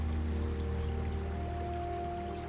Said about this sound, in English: And the rhythmic movement of the boat and the soft lapping of water propel you further into relaxation now.